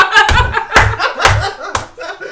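Four sharp, close slaps of a hand striking skin land in a steady rhythm about half a second apart, with laughter and vocal sounds running between the hits.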